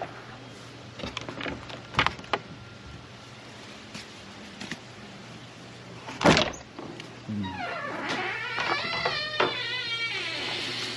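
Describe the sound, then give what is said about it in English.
An old shed door, held together with a bungee cord, creaks open with a long, strained squeal after a few knocks and a heavy thunk, followed by clattering and scraping as someone rummages through tools looking for a shovel. “My shed is old and it's falling apart, and I need a bungee cord to hold the door together.”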